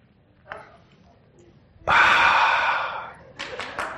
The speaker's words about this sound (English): So then I have to actually sit down. And you're all going, when's he going to sit down on the chair? I'm going to do it right now. Here we go.